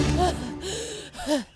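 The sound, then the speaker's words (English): A person pants heavily, out of breath, with two loud gasping breaths, each rising into a slight voiced catch, and no talking. “Well, why are you panting?”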